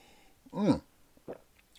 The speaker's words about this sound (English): So far, including this drink, which tastes good, malty, dark, roasted. It's good stuff. One more sip.